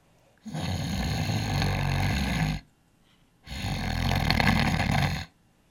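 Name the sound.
voice imitating snoring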